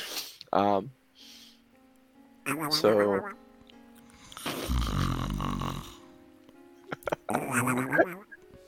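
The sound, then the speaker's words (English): A voice imitates a sleeping character's comical snoring like Donald Duck: a few nasal, quacking snorts and a raspy drawn-out rattle in the middle, loud, with brief speech between the bursts. “Aranon snores like Donald Duck.”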